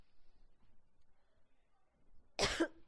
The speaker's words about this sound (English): Ooh, I just coughed into their thing. I hope that doesn't freak them out.